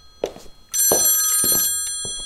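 A telephone bell rings with a bright, sustained metallic trill full of steady high tones, starting abruptly and fading slowly, with a few faint thumps and brief voice fragments underneath.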